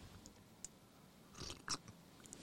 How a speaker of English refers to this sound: I had to take another sip of Joe.